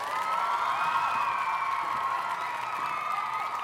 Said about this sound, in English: One more round of applause for my duet partner and the love of my life